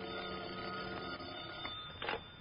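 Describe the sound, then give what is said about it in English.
A telephone on a night table rings at about 1 o'clock in the morning with a steady, shrill bell trill that carries unbroken through the whole moment, swelling into a brief louder burst near the end. No one speaks. “Until about 1 o'clock in the morning when the telephone started having hysterics on my night table.”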